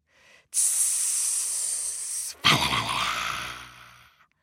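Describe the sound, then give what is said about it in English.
A loud hiss from a snake sleeping in a tree holds steady for about two seconds, then breaks off and bursts back as a harsher, rougher hiss with a throaty edge before fading out. “But again, Baboon was in too much of a hurry and didn't see who was sleeping in the tree. Snake!”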